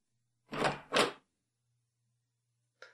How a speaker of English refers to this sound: I wonder why that door opened.